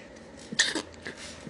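A single short, sharp sneeze bursts out, a quick explosive puff of breath and then quiet, with no talking around it.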